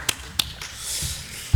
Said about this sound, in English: Small smattering of applause, much deserved.